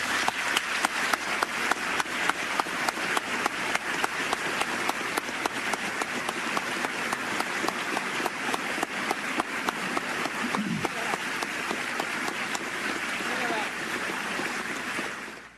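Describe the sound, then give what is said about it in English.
A large crowd applauds steadily, dense overlapping clapping for about fifteen seconds before it begins to thin out at the end, following remarks by President Clinton on immigration laws. “Secretary, I can understand why you didn't stand with me and my colleagues and clap.”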